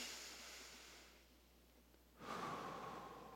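Deep, breathy air sounds of a guided breathing exercise: a long, slow breath fades out, a brief quiet pause follows, then another strong breath rushes in and lingers. No one speaks.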